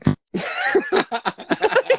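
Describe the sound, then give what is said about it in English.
Garbled, glitchy voice from a bad call connection: choppy, stuttering bursts of warbling, robotic sound broken into rapid fragments, fairly loud, with no intelligible words. “It just sounds like robot farts at this point.”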